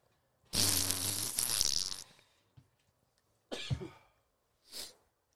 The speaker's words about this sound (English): I'm going to blow my nose, though. I'm going to mute my mic.